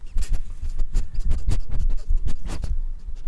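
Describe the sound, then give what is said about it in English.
A dog named Joey sniffs and snuffles at the microphone of a radio show in a rapid, irregular series of short, breathy bursts, loud and rough with scratchy, muffled rubbing sounds and no talking. “He's just sniffing the mic.”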